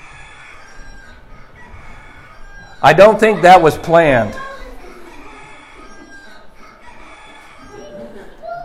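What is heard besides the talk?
rooster crowing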